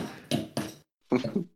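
Two sharp, hard knocks of a large knife striking into a coconut, each with a brief clattering decay, then a pause and a rougher, scraping jab. No one speaks.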